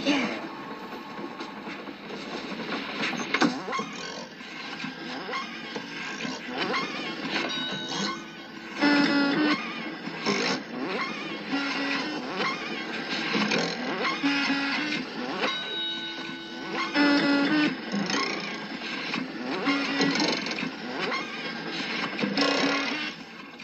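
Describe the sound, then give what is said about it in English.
The most secret machine in a factory, which makes everlasting gobstoppers, runs loudly and steadily, a dense clattering, whirring churn with rhythmic mechanical thumps and short tooting tones woven through it. “This is the most secret machine in my entire factory.”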